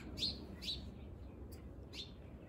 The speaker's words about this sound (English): Birds, they're all watching me, man. There's lots of them. I see you. 1, 2, 3, 4, 5, 6.